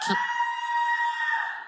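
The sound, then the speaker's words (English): A loud, sustained shout rings out, one long held cry at a steady pitch lasting nearly two seconds before tapering off slightly at the end. “I was about to use his local name, but you've shouted it clean out of my memory.”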